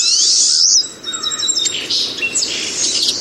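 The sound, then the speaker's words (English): Small songbirds chirp and twitter in a steady, high-pitched chorus, with thin whistled notes and quick trills overlapping throughout. Clear, with no voices. “Birds like pine siskins and goldfinches love to snack on dead flower heads all winter long.”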